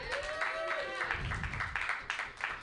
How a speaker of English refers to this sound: Let's get a round of applause for Pam for keeping this place running.